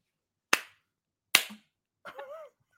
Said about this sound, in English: Oh, I popped myself so hard.